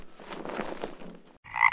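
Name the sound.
frog croaking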